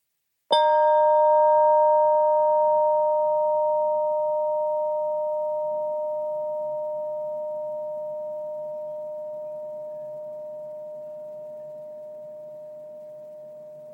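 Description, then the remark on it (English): A single chime is struck once during a mindful listening exercise, giving a bright metallic ring whose clear, steady tone hums on and slowly fades over many seconds, with no talking. “You may want to close your eyes so that you can really hear the chime sound until it's totally gone.”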